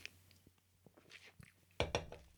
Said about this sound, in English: Definitely need another sip of drink. Mm.